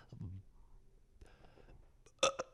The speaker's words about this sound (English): Oh, that was like one of those, like, you think you might throw up burps.